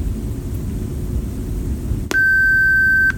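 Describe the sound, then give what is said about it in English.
A single steady electronic beep from a device in teaching mode, prompting the user to name the person in front of it, sounds for about a second, clear and loud, following a stretch of low rumbling background noise with no talking. “Please name the person in front of you after the beep.”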